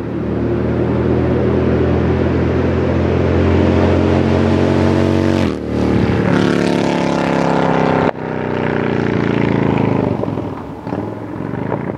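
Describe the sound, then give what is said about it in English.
A loud motorcycle engine roars steadily with strong harmonic drone, then revs and shifts pitch twice with brief drops before climbing again, no voices present. “Ah, a lovely sound that is pleasing to the ear, but not the kind of bikes we were riding this weekend.”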